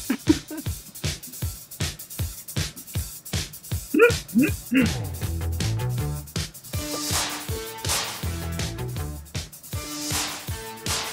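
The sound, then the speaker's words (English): A dog yips and whimpers in short bursts around the middle, set against a loud, steady rhythmic beat of music that continues throughout with tonal melody building in the second half. “I love dogs that have their own theme music.”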